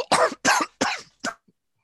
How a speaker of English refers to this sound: I had a coughing fit.